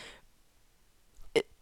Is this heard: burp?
yes